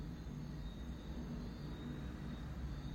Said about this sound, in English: Can y'all hear that? I'm hoping it's a car or something. That's pretty intense. That's a car, but I don't know what that other shit was.